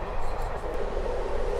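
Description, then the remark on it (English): Steady rumble of a steam train carriage with its windows open running along the rails during a steam train ride, a continuous low roar with an even loudness throughout and no distinct breaks. “It's all part of the adventure of taking a steam train ride.”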